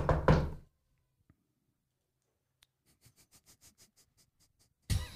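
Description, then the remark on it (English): A quick run of about seven or eight knocks on a front door, evenly paced and moderately loud, after a brief loud thump and near-silence, with another sharp bang at the end. “Not that I need to come to the front door with little buck.”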